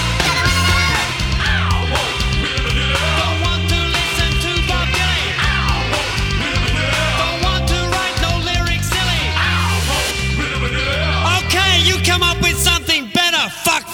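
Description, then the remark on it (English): A loud rock track from a 1992 EP plays throughout, with a driving, repeating bass line, dense guitars and a shouted, energetic vocal over a steady beat, cutting off abruptly at the end. “From the 1992 EP …, top band.”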